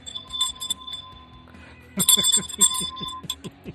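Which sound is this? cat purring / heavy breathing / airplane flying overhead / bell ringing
bell ringing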